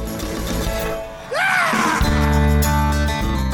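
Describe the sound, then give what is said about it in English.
Howard Dean lets out a single loud, rising scream over a roaring crowd at a political rally during his concession speech after his third-place finish in the Iowa caucuses, and a steady wall of crowd noise and low rumble continues after it. “How can a scream undo a campaign?”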